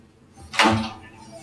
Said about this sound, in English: Sorry, that was just someone kicking the shit out of the room next door.